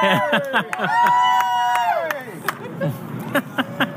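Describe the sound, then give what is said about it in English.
A crowd cheers, with many overlapping voices shouting and whooping, one long sustained yell near the start, and sharp bursts like claps scattered throughout. “Hey, they're still cheering.”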